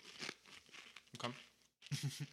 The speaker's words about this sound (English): Kirkland Signature Organic Tortilla Chips. The best tortilla chips in the world. Here we go. Sorry for the bag crinkle, but you're going to get some chewy ASMR now.